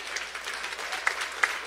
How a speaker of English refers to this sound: Hey, don't give me a golf clap.